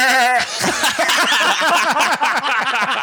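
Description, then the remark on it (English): A person imitates a goat with a short, quavering bleat. A loud, busy jumble of overlapping voiced sounds follows, continuous for a few seconds. “I was going to make a goat noise, but I don't really know what a goat says.”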